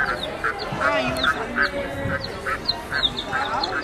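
Repeated cartoonish duck quacks from a video game pop out in a quick, uneven series over a steady low background murmur, fairly loud and close throughout.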